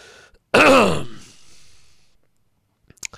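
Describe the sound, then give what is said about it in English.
A single loud, close throat-clearing cough bursts out and trails off into a brief raspy exhale, followed by silence and a few faint clicks at the end. “By the way, I don't have a cough button. I could slide the slider down, but I'm not going to.”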